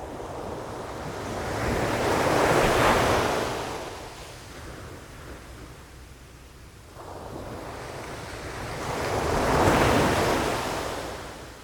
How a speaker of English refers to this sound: My backup is a sound file of waves crashing on a beach. One after the other, after the other, after the other, after the other.